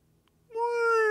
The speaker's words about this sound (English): You hear that whale talking?